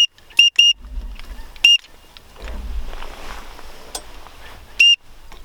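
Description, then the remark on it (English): Short, sharp duck call whistle blasts, blown at teal, high and piercing, sounded in quick bursts of two or three with pauses, over a low rumble of wind and outdoor background noise. “Keep hitting that whistle, dude.”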